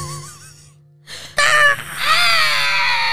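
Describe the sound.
A human voice imitates a bald eagle's cry: a soft wavering whistle-like tone, a brief pause, then a loud, shrill, harsh screech that stretches into a sustained, high-pitched wail.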